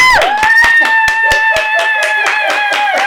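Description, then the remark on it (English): An audience claps hands together in a steady rhythm, about two to three sharp claps per second, for two guests seated at a table, over a loud, sustained tuneful tone that holds one pitch throughout. “So everybody in the building, clap your hands up right now for both of my guests that are sitting at the table with me tonight.”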